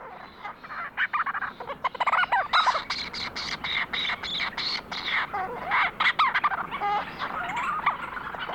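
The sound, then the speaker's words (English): A flock of Leach's storm petrels calling on Kent Island in the Bay of Fundy, recorded by Lang Elliott: a dense chorus of overlapping chattering, purring and squeaky trills that keeps up steadily throughout, busy and fairly loud, with no voices. “Lang Elliott recorded this flock of leeches, storm petrels on Kent Island in the Bay of Fundy.”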